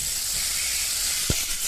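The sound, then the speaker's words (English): A rain stick being shaken, giving a steady, even rush of fine pattering hiss that holds throughout, with one brief soft knock near the end and no voices. “we've been having an awful lot of weather lately, and I was wondering if you could start another rain stick war”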